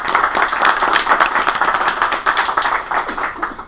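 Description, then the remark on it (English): A crowd applauds steadily to congratulate a 10-year milestone, many hands clapping in a dense, crackling wash that stays fairly loud and even throughout with no voices on top. “So we feel free to give them a round of applause.”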